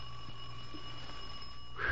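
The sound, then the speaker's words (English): A bell rings steadily for about two seconds, a high, sustained metallic tone with a brief louder clatter at the very end and no voices. “Saved by the bell.”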